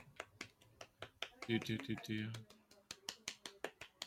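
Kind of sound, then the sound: human body sound, finger snapping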